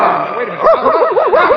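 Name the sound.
dog barking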